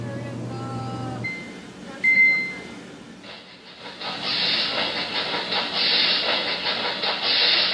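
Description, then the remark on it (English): A few soft electronic tones, then a steady, fairly loud hiss of a rice cooker steaming that starts abruptly and continues to the end, with no talking. “Steaming is starting.”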